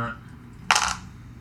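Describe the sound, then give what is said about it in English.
A quick clatter of dice tumbling across a hard tabletop, one bright rattling burst lasting a fraction of a second before settling into quiet room tone. “No, these are the dice that were bad for you.”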